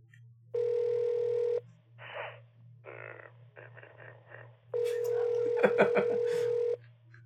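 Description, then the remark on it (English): A telephone line sounds a steady dial tone, then short choppy beeps and bursts, then another long ringing tone, all over a constant low electrical hum with no one talking. “This is phone call.”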